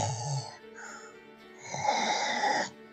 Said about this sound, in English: you hear coming from one of the adjoining rooms a soft snoring sound.